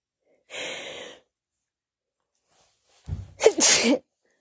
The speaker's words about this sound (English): oh, I'm about to sneeze. I'm so sorry.